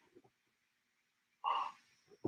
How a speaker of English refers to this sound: Excuse me, I had to yawn.